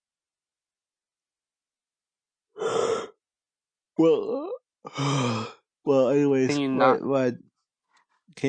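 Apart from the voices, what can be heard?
a person yawning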